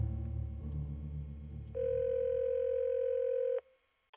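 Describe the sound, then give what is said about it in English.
A telephone line as a phone dials 911: muffled low rumbling and faint clicks, then a loud, steady electronic ringing tone holds for about two seconds before cutting off abruptly. No one speaks. “I fumbled for my phone and dialed 911.”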